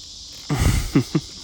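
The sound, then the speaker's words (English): A big fish hooked and missed while fishing makes a heavy splash that churns the water for about half a second, followed by two quicker, sharper slaps, all over a steady background hiss. “Yeah, that thing moved a ton of water.”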